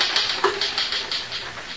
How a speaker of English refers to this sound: Finish typing it and I'll sign it.